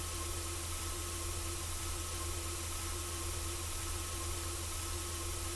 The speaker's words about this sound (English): A radio performance. Some kind of static.